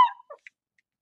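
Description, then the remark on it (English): A dog named Bean lets out one sharp bark followed by a couple of quick, softer yips, then silence. No one speaks. “Yeah, the dog agrees.”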